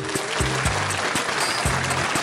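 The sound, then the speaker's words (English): A crowd cheering and clapping sound effect for a game show segment of Stacking Benjamins, a dense wash loud and steady throughout, with short tonal blasts, like horns or noisemakers, sounding at intervals over the roar. “And the crowd goes wild.”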